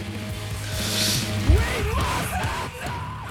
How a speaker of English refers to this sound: I don't even know what part you're laughing at. Just the screaming. Sure. This sounds like traditional metal.